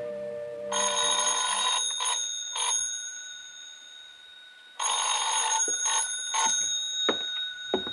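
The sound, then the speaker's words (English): An old-style telephone bell rings twice, each loud, metallic jangling burst lasting about two seconds, separated by a brief pause. No one speaks. “What'd you call about?”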